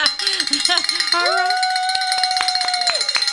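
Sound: bell ringing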